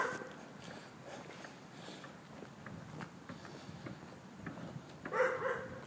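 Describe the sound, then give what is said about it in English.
A large three-headed dog growls and whimpers over a steady rumbling background with faint footsteps, building to a louder bark-like yelp near the end. “I was hoping that I could sneak past the three-headed dog.”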